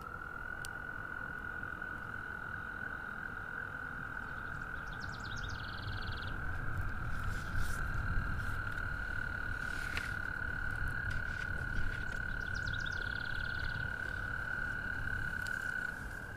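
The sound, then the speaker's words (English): A chorus of American toads calling for mates in spring fills the air with a steady, high, musical trill that never lets up, while a few faint bird chirps break in now and then. “The American toads, they're singing the vivaciousness of spring. They're calling in mates They're singing life into being, you know?”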